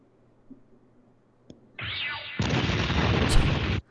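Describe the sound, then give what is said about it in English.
A quiet lull with a couple of faint clicks, then a loud explosion sound effect bursts in, rising into a second, heavier roaring blast that rumbles on for over a second before cutting off. “Some explosions.”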